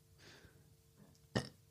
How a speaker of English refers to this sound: Don't burp into the mic. I didn't. I burped and the mic was there.